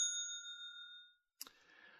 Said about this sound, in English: I don't know if it's even worth hitting the bell for this movie, because I don't think you can spoil the ending. There's a middle act of the story that technically has a spoiler, so I'm going to go ahead and hit the bell for that, I guess.